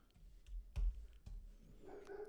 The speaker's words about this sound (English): Oh, my God. Don't mind my dog barking in the background.